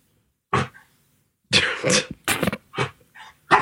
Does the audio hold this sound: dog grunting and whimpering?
yes